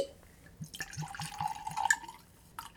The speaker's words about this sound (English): So I'm going to get this open and pour a glass before I get into some of this crazy news that came out.